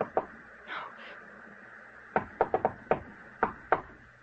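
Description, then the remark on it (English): Knocking on a door, crisp: two quick raps, a short pause, then a burst of about seven firm knocks in an uneven, insistent rhythm. No one speaks. “Someone knocked, Edith. Open the door.”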